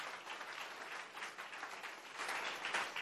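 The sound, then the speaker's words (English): An audience claps their hands in a dense, sustained burst of applause, many pairs of hands at once, steady and fairly loud throughout, with no voices standing out. “In the mighty name of Jesus, clap your hands and bless the Lord.”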